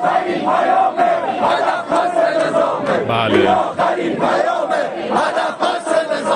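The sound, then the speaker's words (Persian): A large protest crowd shouts slogans against the regime in loud unison, such as "This is the last message, the target is the whole regime", a dense wall of many voices rising and falling in a steady rhythmic cadence throughout. “البته دیگه خیلی هم اهمیتی نداره چون مردم معترض حرفاشون رو خیلی بی‌تعارف و بی‌پرده فریاد زدن تو گوش نظام اینجوری مثلا.”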